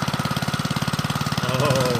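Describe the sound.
A voice imitates a pull-start engine sputtering to life: a steady, rapid low putt-putt-putt that rises into a revving, humming tone near the end, fairly loud.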